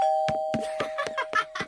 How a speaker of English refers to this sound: You've heard of Ding Dong Ditch, right? Where kids ring the doorbell and then they run away.